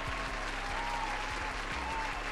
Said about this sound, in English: My goodness, let's clap it up, you guys. Let's clap it up.